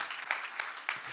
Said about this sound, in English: Or even during the worship, there's just an energy and an excitement that is here at this campus that is just different than any of our other campuses. And so we got to have somebody's clapping. See, you got energy. It's fun.